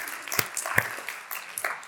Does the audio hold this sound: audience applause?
yes